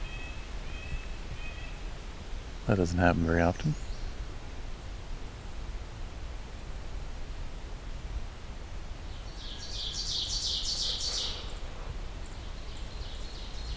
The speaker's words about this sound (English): For once, I have an oven bird above me.